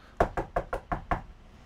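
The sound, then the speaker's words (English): Six quick, evenly spaced, firm knocks on a door, with nothing else sounding around them. “Hang on just a second, John. Let me get the door.”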